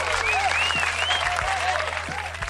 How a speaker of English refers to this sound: Round of applause, everybody.